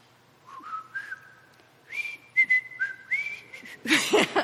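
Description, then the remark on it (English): Someone whistles a short, simple TV theme melody, the held notes stepping up and down, before a burst of louder noise cuts in at the end. “And you can guess who it is when I whistle a few tunes.”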